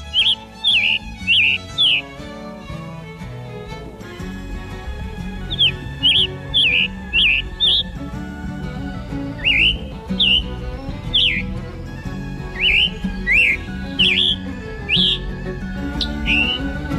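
A Scarlet Tanager sings a series of short, hoarse, robin-like phrases in quick bursts with brief pauses, clear over a steady low background rumble.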